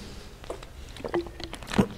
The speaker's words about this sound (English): He says a few things, and I'm going to take a big swig of water, then we're going to keep going.